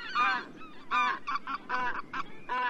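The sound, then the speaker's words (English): White-fronted geese calling in a rapid series of high, nasal, yelping honks, several birds overlapping in a lively chorus that carries on steadily throughout. “As geese go, white-fronted geese are especially strong, athletic flyers.”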